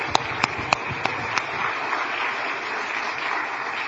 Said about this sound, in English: If you helped at all with VBS this week, would you go ahead and stand up? Don't be shy. If you did prep work, anything, please stand up. Let's clap for these people, please.